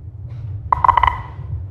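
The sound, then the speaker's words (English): A rapid run of about five short electronic timing beeps, each marking a sprinter's finish in a race comparing Owens and Bolt, sharp and mid-pitched, clustered within half a second over a low steady rumble, then silence from the beeps. “Rather than the last beep, Owens would have been the second beep.”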